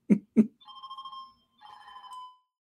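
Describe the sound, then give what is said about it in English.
A telephone rings twice, each ring a warbling, steady-pitched electronic trill lasting under a second, preceded by two quick dull thumps. No one speaks. “So, sorry, guys. Saved by the bell. 1 second.”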